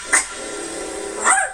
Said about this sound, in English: Lily, give me that bark so we can get into the top dog